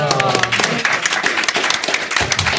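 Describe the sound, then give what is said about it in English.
An audience at GDC claps steadily for a few seconds, a dense, loud patter of many hands, with a brief voice heard under it at the start, applauding a pair of shoes held up for them. “You should hold them up for the audience so we can all clap.”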